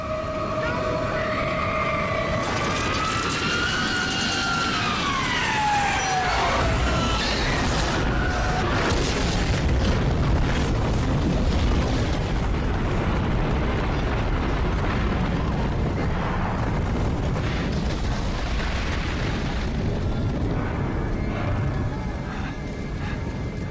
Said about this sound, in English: Number two is Knowing. It's a Nicolas Cage movie. And at 38 minutes and 55 seconds, the Atmos surprises the viewer with the plane crash that happens from ground perspective.